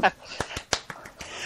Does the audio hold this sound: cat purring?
no